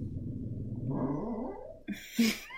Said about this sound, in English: There's a dog here with us and she really is agreeing with what I'm saying. She doesn't like it either.